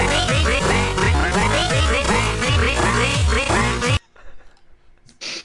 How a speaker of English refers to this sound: Quack. Half speed quack, please.